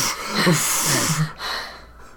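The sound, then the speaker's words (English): Someone imitates heavy, exhausted panting, a quick run of loud, breathy huffs with a little voiced strain, alone for about two seconds. “I'd be, like, breathing really hard and stuff.”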